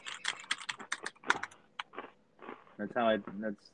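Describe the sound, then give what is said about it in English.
A rapid burst of typewriter keys clacking, sharp irregular strikes tumbling over one another, before a person starts talking over the last few taps. “what the fuck is that noise? What are you typing a fucking essay?”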